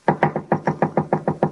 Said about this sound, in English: wise guy knocking on his own door. Is that a signal to you? It don't mean nothing to me.